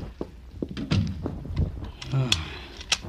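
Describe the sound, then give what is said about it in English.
A door is pushed shut with a few solid thunks, followed by a bolt sliding across with a metallic rattle and a sharp click of the lock, at a home on West 70th, uptown. “The door bolted, locked.”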